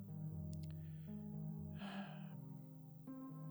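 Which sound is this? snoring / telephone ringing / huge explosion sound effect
snoring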